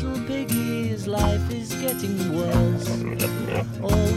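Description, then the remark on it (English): Pig-like grunts and oinks, used as sound effects in a song, come in repeated bursts, mixed into a loud, dense music track and partly buried beneath the instruments. “the pig noises differ quite greatly actually.”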